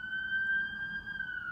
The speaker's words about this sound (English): Oh, there's a siren. There's an ambulance passing. One second.